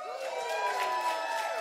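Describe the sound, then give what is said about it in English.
A church audience cheers together as the Bible is opened, a dense, steady wash of many voices shouting and whooping at an even, fairly loud level for the whole moment. “we always cheer when we open the word of God”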